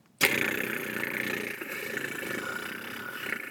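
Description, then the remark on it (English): A pull-back Hot Wheels toy car, its wheel pulled back and then let go, springs into a loud, steady mechanical whir after a brief silence, a buzzing, motor-like drone with a high whine that holds without letting up. “I pulled the wheel back far enough. Now I'm going to let go of it. It's one of those Hot Wheel cars.”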